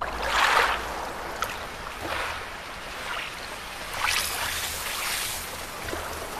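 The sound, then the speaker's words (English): Synthesized, robotic-sounding ocean waves processed with reverb and a ping-pong delay wash in as a series of hissing surges moving left and right, rising and falling every second or two with an echoing delay, steady and moderately loud with no voices. “you could end up with these waves that actually sound like they're robotic”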